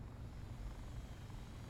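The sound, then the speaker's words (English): A steady rotor whir hums overhead, a continuous low droning buzz that holds even and unbroken throughout, moderately loud with no voices. “Hey, drone! Over here!”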